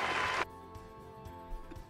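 A loud burst of fake audience applause, a dense crackling wash that cuts off abruptly after about half a second, leaving only a faint steady hum.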